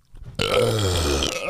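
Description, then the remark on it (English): A single long, loud burp erupts abruptly and rumbles on for about a second, deep and guttural with a rough, croaking texture. “Here goes another one, though.”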